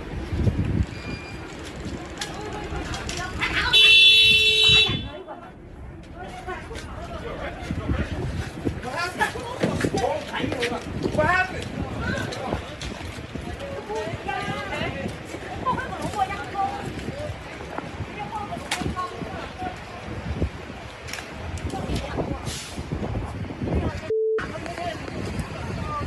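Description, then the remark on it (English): A loud car horn blares for a second or so over noisy, windy street ambience with voices in the background, followed much later by a brief, fainter honk. “You can hear that guy honking a horn back there.”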